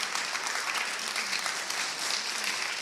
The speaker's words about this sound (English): That deserves a much bigger applause than what you're doing right now.